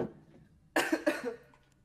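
Two quick coughs in rapid succession, harsh and breathy, with no talking around them and a faint tail of breath afterward.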